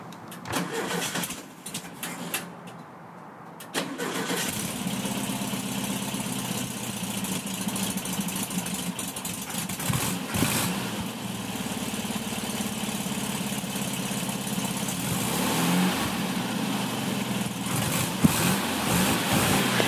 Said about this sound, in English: And he like starts the plane like, here, I'll get a sample like this.